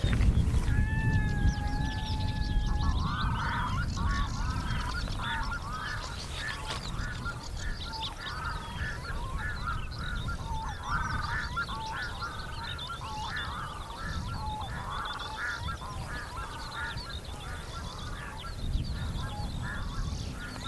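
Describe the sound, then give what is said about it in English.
Odd, unfamiliar bird calls repeat in rapid, warbling bursts over a steady low rumble, some nasal and honking, others drawn-out whistles, continuing through the whole stretch. “Strange calls. Birds that I'm not familiar with.”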